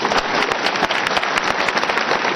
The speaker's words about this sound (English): Clap for yourself.